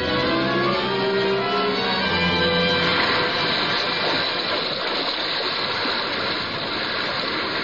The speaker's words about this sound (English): Suddenly the waters around them slowly swelled in broad circles and quickly upheaved. A low rumbling sound, a subterranean hum, and shrouded in a thin, drooping veil of mist, a vast form shot lengthwise from the sea.